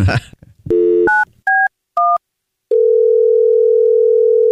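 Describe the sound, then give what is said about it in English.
A short burst of voice gives way to a phone dial tone, three quick keypad beeps, then a steady, loud outgoing ringing tone that drones on until the end, as a prank phone call is placed to a caller's daughter. “And so we're going to call her daughter right now.”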